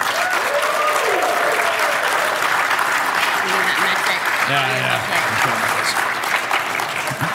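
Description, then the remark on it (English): Sustained audience applause given as a show-of-applause vote on who is excited about the Xbox Series X, on February 29th, 2020: a dense, steady wash of clapping with scattered cheers and a few voices rising briefly over it. “By show of applause, let's see.”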